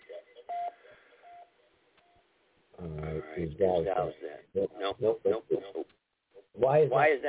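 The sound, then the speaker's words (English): Faint beeping tones at first, then loud played-back voices with an echoing, doubled quality come in abruptly, pause briefly, and return near the end. “All right, we got an echo there.”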